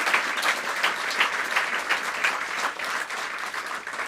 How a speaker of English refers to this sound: So big round of applause to these guys right here. Thank you.